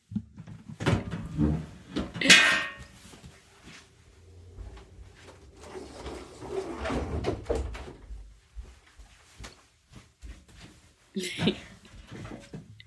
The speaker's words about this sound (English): Wait, I gotta go close my closet door. I'm scared.